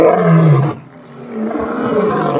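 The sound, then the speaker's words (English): A loud African lion roar at Gay's Lion Farm, a tourist attraction in El Monte where African lions were bred, trained and exhibited, with a deep, rumbling low end, a brief drop in the middle, then a rough, grunting continuation that carries on without anyone speaking. “a tourist attraction in El Monte, dedicated to the breeding, training, and exhibition of African lions.”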